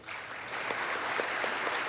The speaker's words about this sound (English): And that's Nancy Pelosi that you hear prominently clapping there on the left of him.